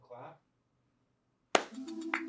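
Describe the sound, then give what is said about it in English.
A single sharp, loud clap cuts in suddenly after a brief murmur and a pause, followed by a lingering low hum and some voice-like sound. “The clap has been had.”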